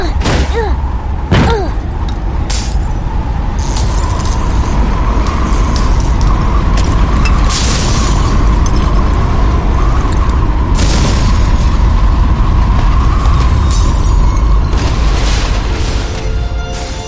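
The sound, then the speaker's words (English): A violent storm passes overhead, roaring without letup, a dense, rumbling wall of wind with a steady droning whine, broken by several sharp crashing bursts and deep booms throughout. “Thank you, Father, that you got us safely to this basement and that these storms have passed.”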